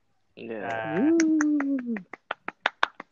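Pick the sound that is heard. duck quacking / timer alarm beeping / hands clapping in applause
hands clapping in applause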